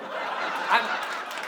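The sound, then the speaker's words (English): An audience claps in a dense, continuous wash of applause that holds steady throughout, with a brief swell midway and faint laughter mixed in. “That's not how you clap.”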